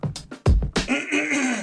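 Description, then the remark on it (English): A few quick, rough throat bursts lead into a longer raspy, voiced rumble, fairly loud, as someone clears their throat with no talking around it. “Yeah, but I needed to clear my throat and I have no other way to do it.”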